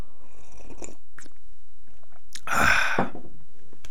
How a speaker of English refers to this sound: Got to grab a sip of coffee.